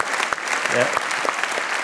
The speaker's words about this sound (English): And I just think that is absolutely remarkable. So just a round of applause for that, please.